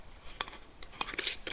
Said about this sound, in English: Okay, I'm opening up the oil.